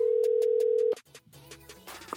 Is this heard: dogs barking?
no